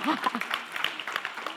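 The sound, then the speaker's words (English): An audience breaks into steady, dense clapping, a brisk crackle of many hands at a fairly loud level, with a few raised voices calling out over it. “If you're gonna clap, you need to clap.”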